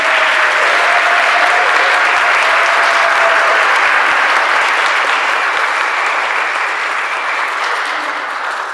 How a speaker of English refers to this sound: Can I get a round of applause for the kids?